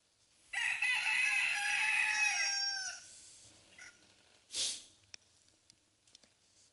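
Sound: rooster crowing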